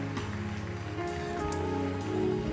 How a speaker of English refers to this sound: Give God a hand clap of praise for those who have made the decision.